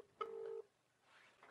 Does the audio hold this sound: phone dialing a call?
yes